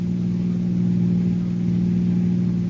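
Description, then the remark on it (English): A car engine drones steadily as the car drives across the border from Tijuana, a constant low, harmonic hum at even loudness throughout with no voices. “And as the car crossed the border, the police started to close in.”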